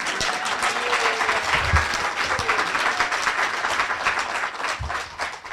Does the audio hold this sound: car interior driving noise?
no